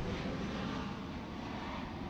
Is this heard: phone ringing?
no